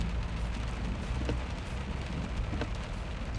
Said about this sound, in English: Yeah, and as you, you know, get in and begin to drive away, it just starts a little bit of light rain, you know, begins to pour down.